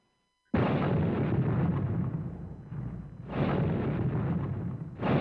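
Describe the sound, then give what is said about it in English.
A sudden, loud explosion bursts out of silence and rolls into a heavy rumble, followed by a second blast and the onset of a third, as explosions rip through the Los Angeles Times building in Los Angeles early in the morning on October 1, 1910. “Early in the morning on October 1st, 1910, explosions rip through the Los Angeles Times building.”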